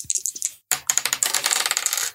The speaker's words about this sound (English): So grab the dice. Sound effects. Listen to that.